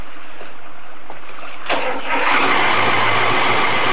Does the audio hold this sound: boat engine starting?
yes